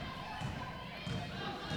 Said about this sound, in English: Thump, thump, thump of the basketball like the telltale heart in Poe's classic story